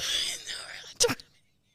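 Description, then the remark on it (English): A forced-sounding yawn: a long breathy inhale followed by a brief voiced groan-like release, then silence. “I'm trying to get my yawn out.”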